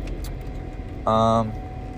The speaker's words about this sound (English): Oh, you know what? I gotta turn my car on for a little bit. It's getting hot in here.